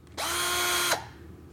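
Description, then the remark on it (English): A battery-powered cordless drill-driver with a rotating turret head whirs up sharply in drill mode, holding a steady high-pitched motor whine for under a second before winding down, loud with no talking. “a battery-powered drill that also drives screws.”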